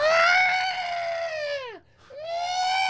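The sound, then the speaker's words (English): A voice imitates a child screaming in tears: a loud, sustained high-pitched wail that bends downward and breaks off, followed by a brief gasp and a second rising wail. “And I look up because I can hear this child screaming from the left side of my ear, like in tears.”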